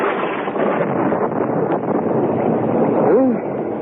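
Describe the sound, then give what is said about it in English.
A storm's wind and thunder roar in a loud, steady rush of noise throughout, with a short rising-and-falling whistle near the end. “Listen to that thunder. Bad storm.”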